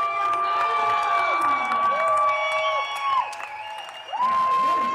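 An audience cheers loudly and continuously at a show where a performer in skeleton makeup and a tattered prom dress lip-syncs, with high-pitched screams and whoops rising above the din, one shrill voice sustaining long, wavering shrieks.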